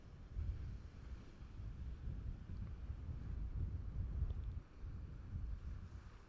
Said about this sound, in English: And when I got down there and I just did the test of it, I couldn't hear myself at all. Just the waves crashing onto the shore.